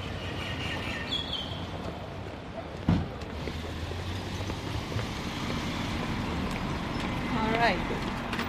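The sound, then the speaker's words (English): A bus engine rumbles and revs as it pulls away from a bus stop on Simon Street in Auckland, a steady low drone rising slightly near the end, set against outdoor street noise with a brief knock partway through. “And there's a bus pulling away at the bus stop.”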